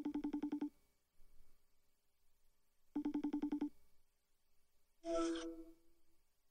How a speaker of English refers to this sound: He probably isn't expecting a phone call right now. Let me FaceTime him.